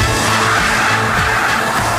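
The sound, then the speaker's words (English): A car with a 380-horsepower supercharged Ford V8 and a Mustang 5-speed gearbox roars through a burnout, a steady, sustained tire squeal over a low engine rumble, loud and continuous throughout. “He's doing a burnout.”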